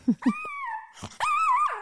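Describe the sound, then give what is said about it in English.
A small Maltese dog lets out two short, low growly grunts, then a long, high, wavering whimper that breaks briefly and resumes as a drawn-out whine. Fairly loud, with no talking. “I'll tell you, I have the most amazing dog.”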